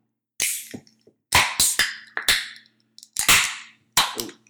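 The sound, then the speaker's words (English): Cans of Okanagan dry pear cider being cracked open: a run of six or seven sharp, loud snaps, each trailing off into a short bright fizzing hiss, with brief gaps between them and no voices. “All right, cracker open.”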